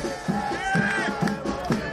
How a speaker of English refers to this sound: And for the past 20 years, soccer fans have chanted it at Chicago Fire games.